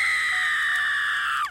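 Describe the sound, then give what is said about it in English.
A sustained, high-pitched eerie scream from a skull wails steadily for over a second, loud and unbroken, then bends downward and cuts off abruptly. No talking accompanies it. “It's no wonder a skull continues to scream after death.”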